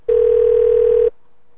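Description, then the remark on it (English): A loud, steady telephone tone hums for about one second as a call is placed to a number in Las Vegas, then cuts off abruptly, leaving near silence with no voices. “We're calling nasty girls in Las Vegas.”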